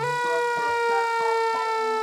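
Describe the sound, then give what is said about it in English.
The siren of Flynn, a bright red fire engine on Sir Topham Hatt's railway, blares steadily, a loud, buzzy tone with a quick repeating pulse running through it, heard on its own with no voices. “Flynn is a bright red fire engine who has a siren that sounds like this.”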